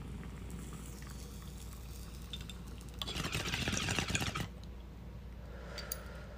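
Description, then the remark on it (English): Water bubbling in a bong as half a bowl left from earlier is ripped: a soft, steady gurgle that swells into a loud, rushing burble for about a second and a half, then drops back to a faint simmer. “There's like half a bowl in here from earlier, so I'm gonna rip that and then I'm gonna repack it.”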